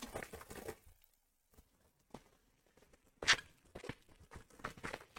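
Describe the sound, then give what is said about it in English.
Crinkly plastic rustling and crackling as adhesive bubble wrap is pulled and torn from a roll. A brief quiet gap comes before a sharp, loud rip, then a dense flurry of crackles. “What if you had a roll of bubble wrap and all you had to do was grab that off and it's already adhesive?”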